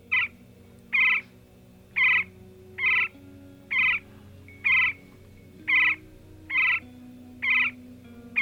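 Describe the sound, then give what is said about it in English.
A woodpecker's song: a series of about ten loud, evenly spaced, mid-to-high pitched call notes, roughly one per second, repeated steadily with no talking. “And that is a woodpecker.”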